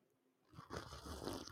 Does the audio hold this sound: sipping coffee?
yes